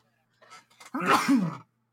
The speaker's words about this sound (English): Bless you.